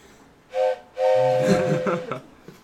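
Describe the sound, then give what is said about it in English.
A long train's whistle blows twice, a short toot followed by a longer, sustained blast with a faint rumble beneath it, fairly loud, with no talking. “A train comes from the direction of Gilrose, and it's heading, well, the same direction that you are.”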